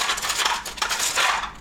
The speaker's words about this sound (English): I know. I'll just organize my pens. I'll just do this.